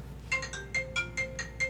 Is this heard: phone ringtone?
yes